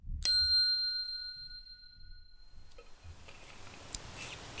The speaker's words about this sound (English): At the sound of the bell, we begin the spell.